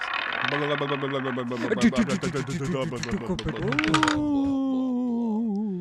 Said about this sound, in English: That's what the roulette sound is now. It sounded like Hank Hill.